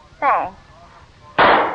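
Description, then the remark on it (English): A brief voiced sound, then a pause, followed by a single loud, sharp gunshot at a chicken hawk, bringing it down with one shot, with a broad, harsh burst that trails off at the end. “You got him. With one shot.”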